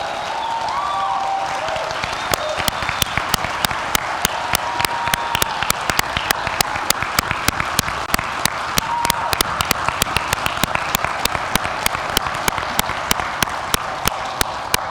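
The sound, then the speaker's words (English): A large church audience applauds steadily for about fifteen seconds for house gathering leaders who stand up, a dense wash of many hands clapping with a few sharp, louder claps standing out and some faint cheering early on. “We're clapping for you at home too, if you stood up in your own house.”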